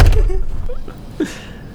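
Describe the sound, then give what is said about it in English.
A door slams shut with a heavy, low thud at the very start, followed by faint voices and a softer knock-like bump a moment later. “Just door shuts.”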